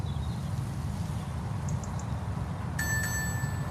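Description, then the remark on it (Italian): An electronic two-minute warning beep, the delivery driver's time limit signal in a scene from the film Sorry We Missed You, sounds near the end: a bright, steady high-pitched tone with a slight pulse, rising over a constant low rumble that runs throughout. Faint short chirps come earlier. “Il bip dei 2 minuti.”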